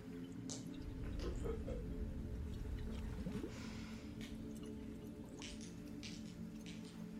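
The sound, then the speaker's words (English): Gulps and swallows of water from a large jug, with soft sloshing and wet clicks repeating every second or so over a low rumble. Nobody speaks. “I need to drink my huge jug of water.”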